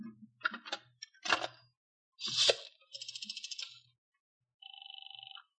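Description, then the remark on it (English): A telephone receiver is lifted with several clattering knocks and clicks, then a short buzzing pulse train and a steady two-toned electronic line tone. No one speaks. “And I climbed up the side of the dresser till I reached the phone.”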